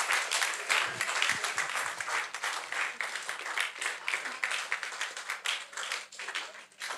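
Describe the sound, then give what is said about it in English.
A crowd claps for every lady present, clapping steadily for about seven seconds. It is a dense wash of many hands with some cheering voices mixed in, holding at a fairly even loudness before easing slightly toward the end. “Clap for every lady. Clap for every lady.”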